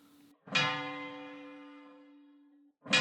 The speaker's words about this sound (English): A bell was struck. It's time for the prayer service that your monks are holding for Donkhara.